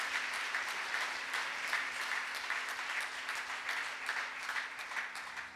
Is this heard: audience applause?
yes